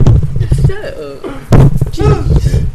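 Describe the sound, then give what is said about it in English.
A single loud thump of a microphone being knocked lands partway through, a heavy dull bump amid ongoing chatter from voices. “Knock the mic on the Bad juice.”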